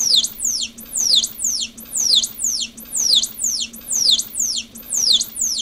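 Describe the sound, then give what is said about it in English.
A dolphin's signature whistle, the specific whistle that serves as that dolphin's name, repeats in a steady rhythm: about ten high, sweeping chirps that rise and fall in the same pattern, clear and fairly loud over a low, constant hum. “So each dolphin has a specific whistle as a name.”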